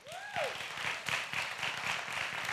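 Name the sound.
audience round of applause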